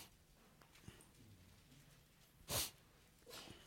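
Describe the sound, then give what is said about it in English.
A single sharp sneeze bursts out from someone in the audience of a Bible talk, followed moments later by a softer breathy snuffle. No one is talking. “Bless you.”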